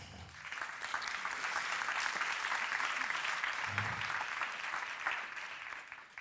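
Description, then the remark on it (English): Sustained audience applause at the morning opening of Wonder, the eighth Medicine Unboxed event, a dense steady patter of many hands clapping that swells slightly and holds at a moderate level for about six seconds, with no talking over it. “I definitely saved the applause.”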